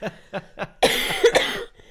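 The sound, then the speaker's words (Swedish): A person who is ill coughs: three short, evenly spaced coughs, then a louder, harsher burst of rough, raspy coughing that fades out. “Typ så, men nu ska jag hosta mig vidare och försöka bli frisk här.”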